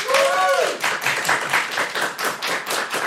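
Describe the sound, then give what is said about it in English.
An audience bursts into sustained applause to vote that ninjas would win a fight against pirates, dense clapping filling the whole moment, with a high whooping cheer rising over it at the start. “And if you think that ninjas would win, please applaud now.”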